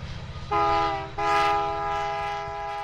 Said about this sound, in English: Right now, nearly all of the Powder River Basin's coal heads east and south on trains like this one, bound for power plants around the U.S.